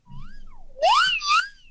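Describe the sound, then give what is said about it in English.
A shrill whistle glides down, then swoops up in a loud, breathy burst and wavers before trailing off, lasting under two seconds with no one talking. “Wow, settle down over there with the whistle.”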